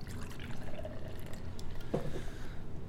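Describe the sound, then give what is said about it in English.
An imperial stout beer with pomegranate pours steadily into a glass, a continuous liquid rush with a brief gurgling, rising glug near the end; no one speaks. “It's definitely not pouring like a motor oil that you're used to seeing with some Imperial Stouts.”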